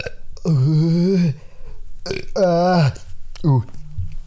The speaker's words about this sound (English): wait, I'm gonna burp.